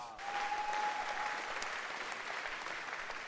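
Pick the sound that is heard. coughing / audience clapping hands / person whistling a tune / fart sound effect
audience clapping hands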